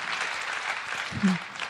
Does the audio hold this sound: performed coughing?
no